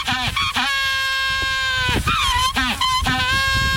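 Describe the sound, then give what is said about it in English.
A penguin's mating call: loud, harsh braying cries repeated in several bursts, with rising, wavering pitches and short gasping notes between, with no talking. “That's a penguin.”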